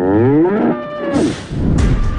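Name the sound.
bull mooing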